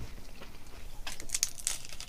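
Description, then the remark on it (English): Crisp crunching as a chocolate hazelnut wafer is bitten: a cone-style wafer with a hazelnut filling and a very thin chocolate coating. A quiet stretch is followed by a few sharp, brittle crackles in quick succession, with no talking. “Yeah, it's a very much a marriage of all sorts of different flavours when you chomp down on it.”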